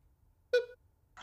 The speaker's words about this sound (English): Oh, there's a beep, some kind of a beep or something. I don't know what.